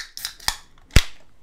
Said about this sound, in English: Everyone, open your beer. Ready?